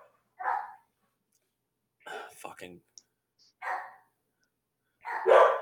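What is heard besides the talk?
dog barking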